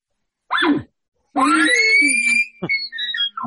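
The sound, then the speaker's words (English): An imitated bull elk challenge scream, made by a hunter to call in a bull elk, loud: a short squeal, then a long rising, whistling shriek that breaks into a few raspy grunting chuckles at the end. “Oh, yeah, but hit with the scream, the challenge.”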